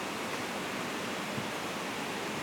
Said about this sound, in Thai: ได้ยินเสียงฝนไหมครับ